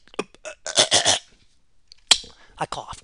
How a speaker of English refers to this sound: I coughed.